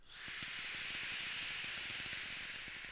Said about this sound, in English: this crackle is making me want to keep using this RDA right now.